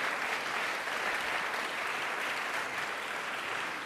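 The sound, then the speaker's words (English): An audience applauding steadily, a dense, even wash of many hands clapping at once that holds at the same level throughout, with no voices over it. “Please give Brian a big round of applause for telling us a little bit about his career so far.”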